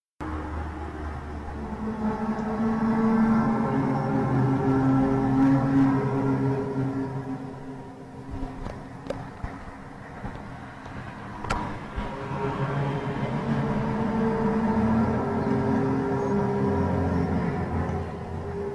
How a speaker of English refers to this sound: this hum is generally heard indoors and becomes louder at night. It is most commonly reported in suburban areas, and the noise becomes impossible for those people to track down. We're going to play a little audio for you of this hum sound right now.